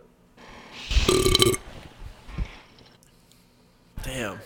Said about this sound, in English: That's a Red Bull burp. Gives you wings, bro.